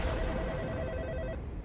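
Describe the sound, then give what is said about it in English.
A telephone rings on an outgoing call to the Screven County Sheriff's Department: one steady electronic ring tone lasting just over a second, then cutting off, heard alone over a faint low background hum. “I grabbed my phone and called the sheriff.”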